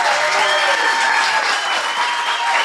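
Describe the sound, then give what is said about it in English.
A large live audience at a live show in Nashville cheers and applauds steadily, a dense wash of clapping with whoops mixed in, loud and sustained throughout without a break. “We're in Nashville with an amazing crowd. Let me hear it.”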